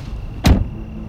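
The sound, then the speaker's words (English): A car door shuts once as someone climbs out of the car, a solid thump that quickly fades, set against a low, steady background hum. No one speaks. “So I climb out of the car.”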